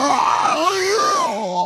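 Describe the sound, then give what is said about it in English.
A person vocally imitates a creature's screech as it unfurls itself again after being thrown to the ground: one loud, continuous, strained wail lasting under two seconds, its pitch wavering and sliding up and down, with no words. “All right, so you reach up, and with Nibnub giving an assistive pull, you peel it off of you like a wet towel and throw it, just suplex it down on the ground, and it immediately begins to unfurl itself again and screech.”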